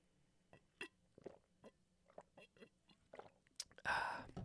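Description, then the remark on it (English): Someone takes a quiet sip of water: soft mouth clicks and gulps spaced out over a few seconds, ending with a short breathy exhale. “But because I was alone, I talked a lot more than usual, and I'm super thirsty and parched right now, so give me just 1 second while I take a little sip.”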